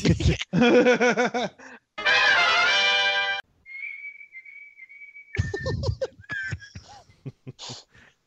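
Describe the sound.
A person whistles one long, thin, steady note for a couple of seconds between bursts of laughter and chatter, imitating a rocket falling through the air.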